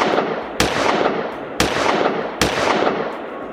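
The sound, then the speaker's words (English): Three sharp revolver gunshots crack out at uneven intervals, shooting holes into a saloon sign, each ringing off with a short echoing tail over a constant rushing background noise. “Bitter Creek, again on his back, began shooting holes into the Ransom Saloon sign.”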